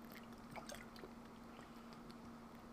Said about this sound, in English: Hold up, let me take a sip of water real quick.